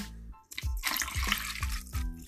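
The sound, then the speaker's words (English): OE malt liquor glugs from a bottle into a big glass over ice, a steady splashing pour broken by several deep, rhythmic gulping bursts, with no talking. “Motherfucking ass in here drinking this shit. With a big ass glass. Yep. On ice.”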